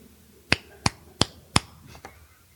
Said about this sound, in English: Should I do a pop, pop, pop so you might see it in the wave bars? Okay, I'm going to clap. Yeah.